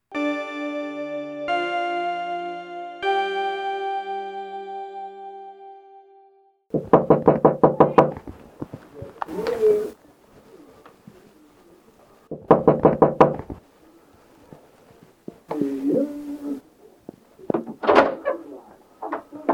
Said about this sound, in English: Since there had been no call on the intercom, he probably assumed the door knocker was a neighbor